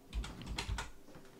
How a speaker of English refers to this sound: So, with that said, though, what are you typing right now?